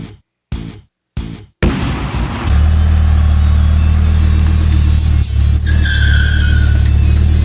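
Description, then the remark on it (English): A Chevy Colorado pickup truck engine cranks in three short bursts, then catches and roars into a loud, steady rumble that keeps running without any talking. “Tell you something about this Chevy Colorado.”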